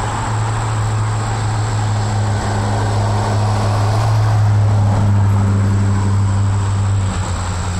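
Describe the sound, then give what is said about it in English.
Loud, steady engine roar of cars passing on the street, a deep droning hum layered with broad rumbling noise that holds constant throughout, continuous with no voices. “These cars are monsters.”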